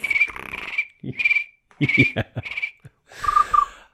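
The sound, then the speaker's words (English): Crickets chirp in a steady high trill that starts and stops in short bursts, mixed with a few low, throaty croaks, with no one talking, like a night-time sound effect. “Yeah, crickets. I'm going to put crickets in there.”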